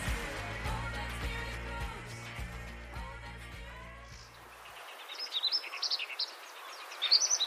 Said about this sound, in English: The bird song you are hearing is the large-billed reed warbler, which is indigenous to the Pamir Mountains in Tajikistan.